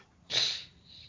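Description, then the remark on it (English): A female pet bulldog's heavy, snorting breath outdoors: one loud, hissy exhale that tails off into a softer, raspy wheeze, with no voices. “Oh, that might be my dog breathing.”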